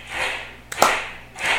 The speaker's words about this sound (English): We actually have a studio audience here. The audience. Right, audience? Let them know. There we go. Yeah. They're slow to draw today. They need some. Come on, clap with me. Clap. Ready? Go.